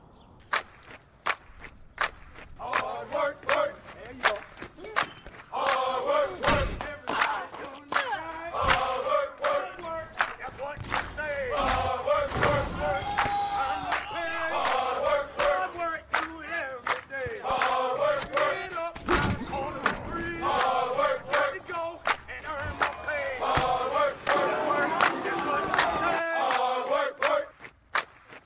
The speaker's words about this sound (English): Everybody's got their gear on. People are chanting and cheering on the train before you even get to the station. There's a sense of camaraderie because Philly loves their sports teams.